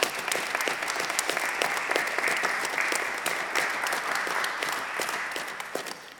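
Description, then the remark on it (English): A church audience applauds steadily for about six seconds for its small group ministry participants, who are standing. Many hands clap in a dense patter at an even, moderately loud level, with no voices heard over it. “Let's give them a warm applause.”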